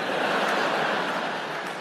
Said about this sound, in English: And audience claps because they've acknowledged it.